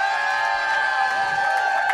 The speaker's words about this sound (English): So I guess let's give a big, big, big round of applause to LA hometown heroes